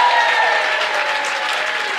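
A King's Church audience applauding a member of the church football team after its 5-1 win, a steady, dense wash of clapping that stays loud and even throughout with no voices breaking through.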